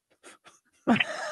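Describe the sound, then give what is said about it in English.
A single loud sneeze: a couple of soft, quick inhales, then a sudden explosive burst that trails off into a breathy, voiced tail. “God bless you.”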